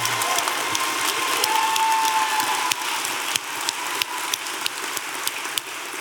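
An audience applauds steadily, a dense crackle of many hands clapping at once, sustained at an even level throughout with a few sharper individual claps standing out near the end.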